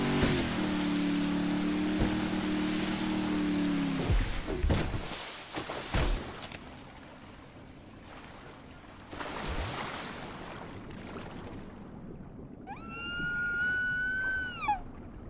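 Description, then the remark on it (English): In a video game, a boat engine drones steadily over water, then cuts off with a couple of heavy thuds and splashes as Trevor dives out of the boat and lands on top of an orca, killing it. Rushing water and a high, wavering orca call follow near the end. “Trevor diving out of a boat and landing on top of an orca and killing the orca.”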